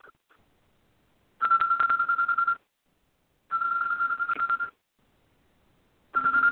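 A pet bird named Salty mimics a telephone ringtone: three trilling, warbling rings about a second long each, separated by pauses, loud with no talking.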